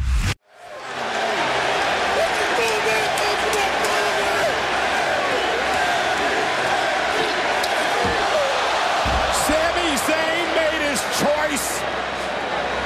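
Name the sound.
wrestling crowd cheering loudly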